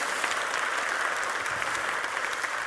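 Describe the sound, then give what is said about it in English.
An audience breaks into steady applause for the Holy Spirit, a dense, continuous wash of many hands clapping at an even loudness for a few seconds, with no voices standing out. “Can we just give the Holy Spirit just a round of applause?”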